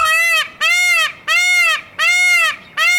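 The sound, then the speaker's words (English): A peacock screams over and over, five loud, nasal, high-pitched wails in a steady rhythm, each about half a second long with short gaps between them and no talking. “And also, peacocks make the worst noises. They do. Their cries are... Screams.”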